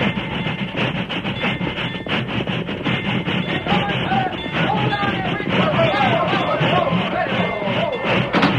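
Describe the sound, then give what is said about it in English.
A steam train grinds and rattles loudly, metal brakes squealing in wavering tones as it slows, with a steady rhythmic clatter and indistinct voices buried in the din. “Stop this train or I'll stop it for you.”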